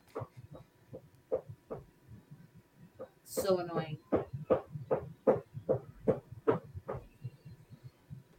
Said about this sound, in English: Who is knocking? Hello? Hello? Why are you knocking?